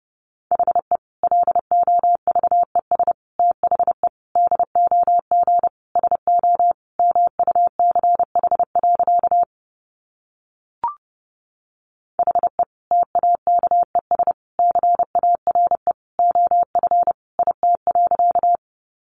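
Rapid Morse code at 30 words per minute: a steady mid-pitched tone keyed into quick dots and dashes, with a short pause partway through and no voices.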